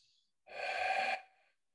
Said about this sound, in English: And then finally, let's wrap it up with one more deep cleansing breath. Begin by breathing out all your air.